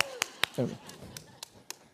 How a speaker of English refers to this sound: I'm going to clap for the people that didn't clap over here, okay?